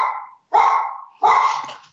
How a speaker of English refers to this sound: Yeah, your pup is upset about something. Apologize to our listeners that somebody knocked on the front door.